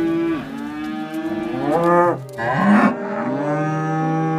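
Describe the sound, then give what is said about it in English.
Cattle low in drawn-out, overlapping moos, deep and harmonic-rich with rising and falling pitch, loud and continuous over about four seconds with no speech. “In my dream, I was standing on the bank of the Nile, when out of the river came up seven calves.”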